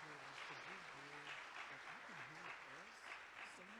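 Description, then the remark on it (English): Steady audience applause fills the room, a dense wash of clapping from a crowd, with a voice or two calling out over it throughout. “Would you give them a round of applause and let them know that you appreciate their efforts?”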